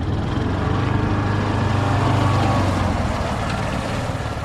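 An ultra-low volume pesticide spray truck, spraying tiny pesticide droplets to kill mosquitoes in flight, runs its engine and blower in a steady, loud drone, with a deep rumbling hum and an even hiss that holds constant throughout, and no voices.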